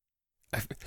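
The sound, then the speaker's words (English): After a moment of silence, a wet sip of whiskey, with a brief slurping rush of air and liquid followed by a couple of softer mouth sounds. “I'm going to have to get another one here.”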